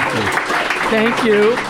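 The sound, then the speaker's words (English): An in-person audience in the Arts Cafe of the Kelley Writers House claps in a steady, dense patter of many hands while eating lunch, with a few scattered voices and a rising vocal cheer or call cutting through the applause. “Let the record show, they're eating lunch while applauding.”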